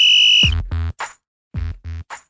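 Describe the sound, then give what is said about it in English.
A loud, piercing whistle blast sounds for about half a second, then cuts off into a few short, strained shouted vocal bursts in a rough rhythm. “Remember the whistle is so loud.”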